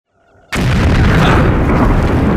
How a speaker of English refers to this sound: What the? Mines! We're in a minefield!